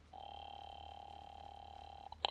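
A steady electronic ring tone sounds over a telephone line for about two seconds as a call is placed to a woman at her home, clear and unbroken, then cuts off with a brief click and clatter as the receiver is picked up.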